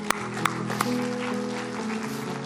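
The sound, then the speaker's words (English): An audience at a morning church service breaks into steady applause, a dense wash of clapping with a few sharp, louder claps near the start, while a low sustained musical tone hums underneath. “So I want you to give yourself a round of applause this morning.”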